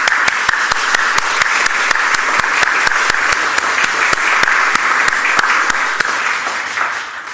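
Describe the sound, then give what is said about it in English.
An audience in a church claps their hands in praise of God, a dense, loud wash of applause with sharper claps standing out in a steady beat, holding for several seconds before tapering off slightly at the end. “When was the last time we clapped our hands in praise of God? Go on.”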